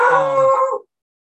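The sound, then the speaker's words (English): Dogs in a house howl in a single loud, sustained burst of under a second, with a wavering tonal pitch that cuts off abruptly into silence; no one speaks. “We do have dogs in this house.”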